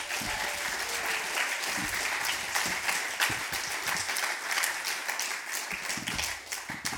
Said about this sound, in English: Also a big welcome to our Foyle Young Poets as well. Can give them a round of applause.